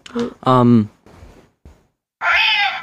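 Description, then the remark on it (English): A cat in a loft meows twice, a short, fairly loud meow followed after a pause by a longer, higher-pitched, strained one, with faint soft noises in between. “The loft cat has weighed in.”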